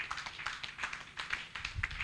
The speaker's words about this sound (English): Can you give the Lord a clap of him?